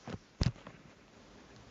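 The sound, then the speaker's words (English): A phone line cutting out: a few crackling clicks and bursts of static over a quiet line, then a steady electronic tone starts abruptly at the very end. “Oh, geez, I lost him.”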